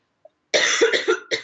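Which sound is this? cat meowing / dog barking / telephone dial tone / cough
cough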